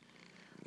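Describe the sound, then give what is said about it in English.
A cat purrs loudly while rubbing her head on a stack of books, a steady rumble with a soft breathy texture, growing slightly stronger toward the end of the brief moment, with no voices present. “She's rubbing her head on a stack of books and purring very loudly.”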